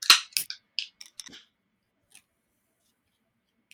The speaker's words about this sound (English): Our last beer today is again from Pipe Dreams. It's Sweet Smart Sour Ale. In 3, 2, 1, crack.